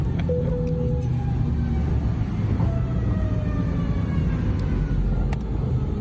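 A Boeing 717 from Atlanta lands without nose gear, its nose dragging on the runway after the back wheels touch down: a loud, unbroken grinding roar and deep rumble, with a thin whine sliding downward and a few sharp clicks. No one speaks.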